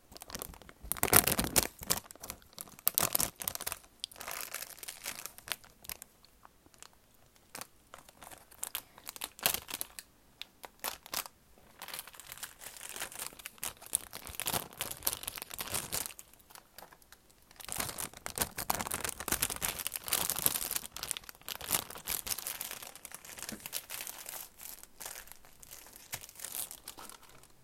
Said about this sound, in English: now I'm gonna see what noises the packet makes and see if it makes any good ASMR sounds.